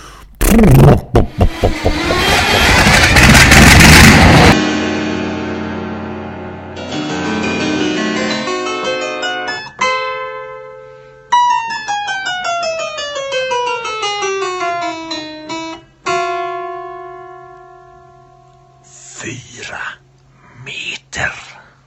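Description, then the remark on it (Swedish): A short fan-made intro jingle opens with a loud, noisy burst, then moves into sustained tonal notes and long gliding downward sweeps, ending with a few brief breathy bursts. “Det var vignetten tolkad av …”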